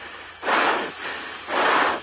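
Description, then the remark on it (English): Two heavy, hissing breaths from a racing driver over team radio after he loses throttle, each a broad noisy whoosh lasting about half a second, separated by a quieter pause with steady static underneath. “Listen to his breathing.”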